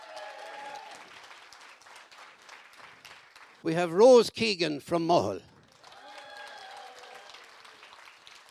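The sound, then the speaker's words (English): An audience claps in steady, dense applause for the eight finalists of a competition, which pauses while a man speaks loudly over a microphone, then the clapping starts up again and carries on. “Give a nice round of applause to the eight finalists.”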